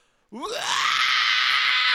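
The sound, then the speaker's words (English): A voice imitates a singer's wailing scream, like the vocals at the Harlem Cultural Festival, rising from a low sliding onset into a loud, sustained, strained shriek that holds steady, alone. “And some of the women's vocals and the men's vocals, when they were feeling it, they were straight just...”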